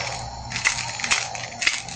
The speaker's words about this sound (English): It was the silver coins rattling in the box. "Hey, who's stealing my money?" he shouted.